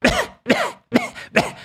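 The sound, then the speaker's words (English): A person imitates a woman's loud, harsh coughing: four forceful coughs in quick succession, muffled as if directly into a hand, with brief pauses between them. “She sits down and immediately starts coughing loudly and frequently directly into her hand like this.”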